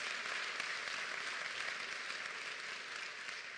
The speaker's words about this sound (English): So on this Public Servants Day, to our EMS, to our firemen, to all the groups who serve, we applaud you.